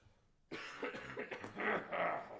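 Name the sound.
coughing and throat clearing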